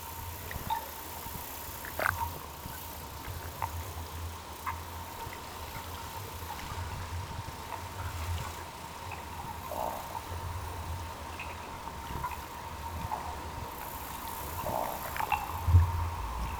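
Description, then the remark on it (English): Eels in a Loch Ney fishery holding thousands of eels, recorded underwater by hydrophone: a steady low rumble and a faint constant hum, broken by scattered soft clicks, pops and gurgling bursts, with no voices. “And this is the sound that the eels were making.”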